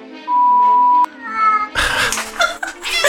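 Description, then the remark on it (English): A cat meows insistently for attention, a run of loud, drawn-out meows in the second half, preceded by a steady high-pitched tone. No one speaks. “The cats are like, now you're facing each other. Now you have no excuse to ignore us.”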